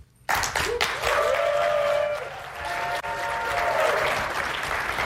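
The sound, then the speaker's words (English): Fairly lukewarm applause at a Snapdragon presentation as a presenter is welcomed back to the stage to talk about smartphones; it starts abruptly and holds at a steady, moderate level for about five seconds, a dense wash of claps from an audience with faint tonal music or hum running underneath, no standout cheers. “That's fairly lukewarm applause.”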